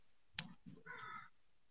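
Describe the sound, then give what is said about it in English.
A single crow caws once outdoors, a harsh, drawn-out call, preceded by a brief sharp click, with faint background hum and no talking. “I feel like I just heard a crow.”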